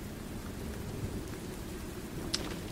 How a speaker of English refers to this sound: It is a rainy day.